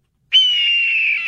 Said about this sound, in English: And then we got a red-tailed hawk, which sounds like this, apparently.